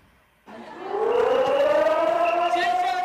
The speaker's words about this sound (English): Sirens sounding on the streets of Taiwan Monday as troops kicked off the week with an annual air raid exercise. In cities across northern Taiwan, citizens were asked to stay indoors for 30 minutes from 1:30 to 2 p.m. local time.